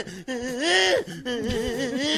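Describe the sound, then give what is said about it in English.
A man's voice makes frantic, wavering whimpering and yelping noises in two quick bursts, imitating someone running from a big dog and about to get bitten. Loud, with no words spoken. “When you're running from a big dog and you're about to get bitten, you sound like this.”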